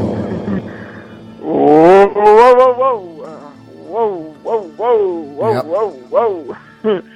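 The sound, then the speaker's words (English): During a radio show, a loud voice makes wordless, drawn-out howls and short vocal bursts, each one smeared by a heavy echo effect turned up more than usual, leaving ringing, reverberant tails between them. “Yeah, I got the echo cranked up a little more than usual.”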